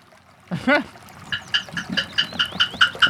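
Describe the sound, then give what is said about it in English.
A short vocal sound comes first, then a new wood block knocks about ten times in a quick, steady rhythm as a sound effect for a horse. The hollow clops sound like hoofbeats. “I love these new wood blocks. They work for everything.”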